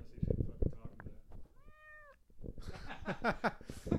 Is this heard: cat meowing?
yes